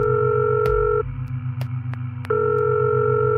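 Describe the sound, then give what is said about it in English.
A phone ringback tone purrs steadily, stops for about a second, then starts again, with a few faint clicks and a low hum on the line between rings. “Everyone begins to search for her, some looking around the mall, others trying to reach her on her phone.”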